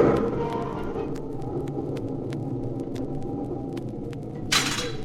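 A clap of thunder in a thunderstorm, with a heavy gale blowing outside a tent: a heavy, steady low rumble with scattered crackles, then a sudden sharp, bright crack bursting out near the end.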